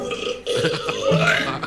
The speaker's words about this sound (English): I just broke the world record for women's loudest burp.